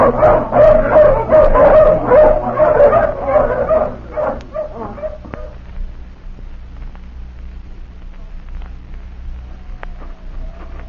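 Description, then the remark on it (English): A pack of hounds, just let off the leash, bark and whimper together in a dense, overlapping chorus that is loud at first, then fades over about five seconds, leaving only faint scattered yips over a low rumble. “All right, let the hounds off the leash.”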